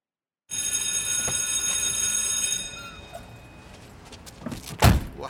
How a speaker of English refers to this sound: Whoa, you're getting in awfully late today, linguist. That's the fifth period bell.